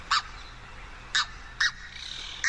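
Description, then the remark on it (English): A red-breasted goose, a globally endangered bird, gives four short, sharp, high-pitched honking calls at irregular intervals, clear against a faint background hiss. “It's the red-breasted goose.”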